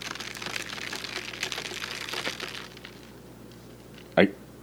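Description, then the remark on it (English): Melting ice in a coffee drink, with barely any ice left and not fresh, gives off a soft, steady crackle and fizz that fades after a few seconds, then a single sharp clink rings out near the end. “There's barely any ice left.”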